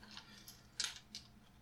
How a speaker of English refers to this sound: I'm gonna go into my handy dandy dice bag, and I'm just gonna flip a coin for who I want to go to first.